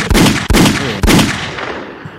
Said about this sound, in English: Oh, where's the gunshots? I got you.